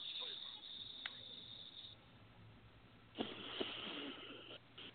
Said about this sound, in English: Then you move your finger to the other nostril as you're breathing out. And you repeat this until you start to feel relaxed. So I'll just do it. It's going to sound kind of funny, okay? So I'm going to breathe in.